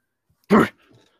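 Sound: dog whimpering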